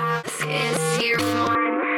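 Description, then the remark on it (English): A short stretch of music played backwards, with dense sustained chords that shift abruptly several times in two seconds, loud and continuous with no voices. “Now we have it in reverse.”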